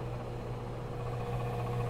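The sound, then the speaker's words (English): A microwave's fan runs with a steady, unbroken whirring hum, layered with low droning tones and a faint hiss, holding constant loudness throughout with no voices. “I know, the microwave is making a weird noise.”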